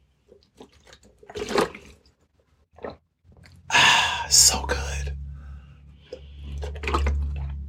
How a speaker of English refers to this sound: Excuse me. Let me get a little water. A little parched.